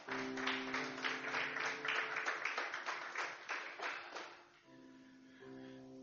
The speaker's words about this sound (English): Give God a round of applause.